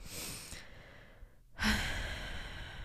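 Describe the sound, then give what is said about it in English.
Breathy nasal sniffling from a stuffy nose: a noisy inhale, a brief pause, then a sharper, louder sniff through a congested nose, with no talking. “I kind of have a stuffy nose. That's why I'm like sniffling.”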